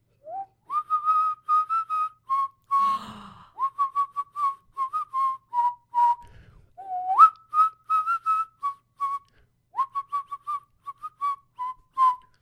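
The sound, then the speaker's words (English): Someone whistles a wobbly, off-key tune alone, with short repeated notes that rise and dip unsteadily, breathy and uneven, a few brief scuffs breaking up the melody. “And she whistles very badly because the DM cannot whistle for shit.”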